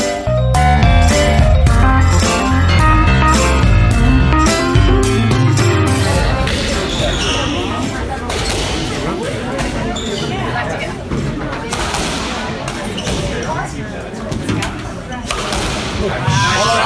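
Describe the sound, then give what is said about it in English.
Brief music gives way to a loud, steady crowd murmur, punctuated by sharp, irregular cracks of a squash ball striking the walls and racket, as a crowd watches matches at a squash tournament, the Piedmont Driving Club Invitational in Atlanta. “So to any squash player, that's an extremely familiar sound at any squash tournament.”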